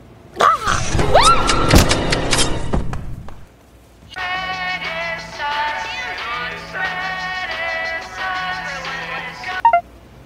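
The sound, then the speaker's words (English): A phone ringtone plays a bright electronic melody, repeating its short phrase three times at steady volume, after a burst of loud clattering and thumping. “My ringtone.”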